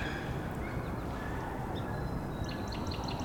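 wood duck calls

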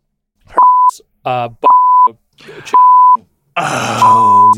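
censor bleep tone

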